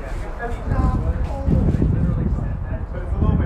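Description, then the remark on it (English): Steady, cold outdoor wind buffets the microphone with a loud, low rumble throughout, while voices talk over it in the background. “It's a little windy.”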